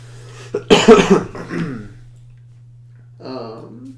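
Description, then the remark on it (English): A loud cough bursts out, followed quickly by a second weaker cough, then a short pause and a brief throaty vocal sound; a steady low hum runs underneath. “I was thinking, like, I have, like, a tickle in my throat. I was like, if I could easily have a coughing fit in, like, any minute.”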